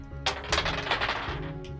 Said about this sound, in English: I'll just get out all my dice really quick. Take your time. I'm gonna need like a lot of dice, so like don't worry about it.